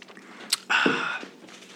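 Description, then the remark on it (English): Chewing with a sharp crunchy snap followed by a loud, wet, noisy burst of mouth sounds, then quieter fading chews. No one talks. “I hope everyone enjoys chewing.”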